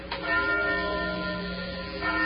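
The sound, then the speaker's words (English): A church bell rings from a belfry with nobody pulling the bell rope, its deep resonant tone sustaining and humming steadily throughout, fairly loud with no voices present. “Bill, look up through that belfry. That bell's ringing.”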